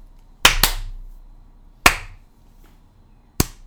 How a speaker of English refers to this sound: That is me clapping right now